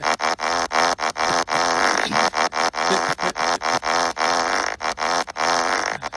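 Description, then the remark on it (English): A voice makes rapid, rhythmic fart-like raspberries, loud, chained into a beatbox-style pattern of short sputtering bursts separated by brief breaths, for several seconds without words. “I was gonna say, what if someone could actually have control over their farts and they're like beatboxing with their ass?”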